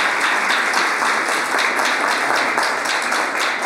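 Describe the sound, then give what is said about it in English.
An audience in Tacoma applauds steadily for the panelists, moderator and sponsors, a dense wash of many hands clapping at an even, fairly loud level throughout, with no voices standing out above it. “Yeah, I would invite everyone to give a round of applause for our panelists, moderator, all the sponsors today.”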